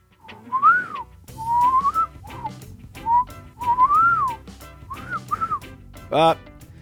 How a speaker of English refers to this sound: Oh, my whistling.